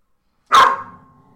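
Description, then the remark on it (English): A single sharp bark from a pet dog named Moose rings out after a moment of silence, then trails off into a faint, lingering tail with no talking. “Well, on that barking note, I guess that's it for us for this week.”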